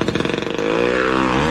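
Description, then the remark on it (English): A chainsaw cutting through hedges in a maze sputters in quick rapid pulses, then settles into a loud, steady buzzing whine that climbs slightly in pitch as it revs, with no voices. “I'm not sure that you should be using a chainsaw”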